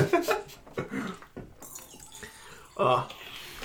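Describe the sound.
Someone drinking water, with soft sloshing and dripping liquid sounds over a few seconds, while people talk intermittently in the background.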